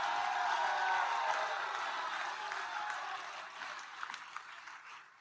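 An audience claps and shouts to the Lord together, a dense wash of crowd noise with cheering voices that is loud at first and gradually tapers off, with a few sharper claps near the end.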